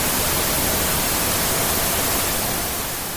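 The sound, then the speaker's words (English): A loud, dense blast of hissing static from a data tablet's eyepiece fills the whole range evenly for a few seconds, steady and harsh with no voices, tapering only slightly at the very end. “15 exabytes of static punched the doctor in the left eye, hard enough to send him flying back from the data tablet.”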